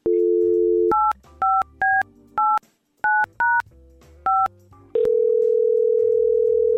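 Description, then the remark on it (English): A telephone dial tone hums briefly, then about eight sharp touch-tone beeps are keyed in an uneven quick rhythm, followed by a loud steady tone as the call connects; no one speaks. The call is placed live on air from the Y100 radio show. “All right, let's give Greg a call.”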